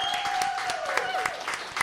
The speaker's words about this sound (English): Okay, well, how about another round of applause for our artists this evening?